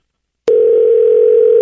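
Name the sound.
phone ringing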